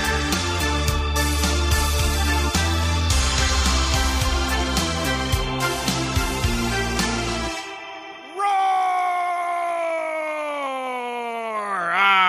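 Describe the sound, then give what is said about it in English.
After a burst of music cuts out, a person lets loose a loud, sustained 'liberty roar' of frustration that lasts about four seconds, strained and harmonic, its pitch sliding downward before a final wavering rise. “Yes, that is me letting out my frustration via a liberty roar, which I think is a much more healthy way to deal with frustrating times than all the many other destructive ways we could possibly deal with frustration, whether it's punching a wall,”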